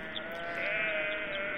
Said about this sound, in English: So once again, despite being in the middle of a rebellion against the world's only superpower, things in Britannia were largely like this. Oh yeah, the sheep are back.